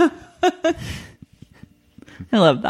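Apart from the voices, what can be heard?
sneeze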